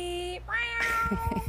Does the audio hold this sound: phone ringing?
no